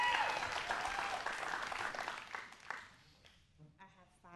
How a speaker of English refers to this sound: Give her a hand clap this morning as she comes.